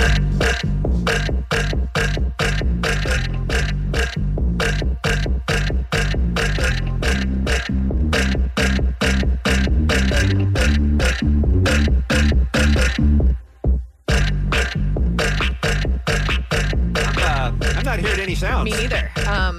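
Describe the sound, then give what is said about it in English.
A loud, pulsing music track built from rhythmic burps, chopped and repeated on the beat over bass, with a brief drop to near silence before the groove returns. “So you're going to hear some screams, some laughs, a bunch of burps.”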